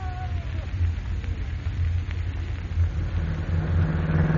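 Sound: car engine running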